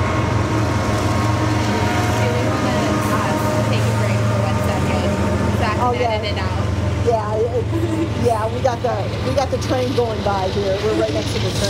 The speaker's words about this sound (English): We got the train going by here. We're right next to the train tracks. It's starting to slow down now.